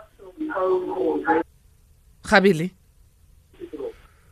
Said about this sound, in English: Can I please remind all A-teamers, if you're calling in to any radio station, to any show, switch off your radio, because we hear ourselves echoing and it's bad quality.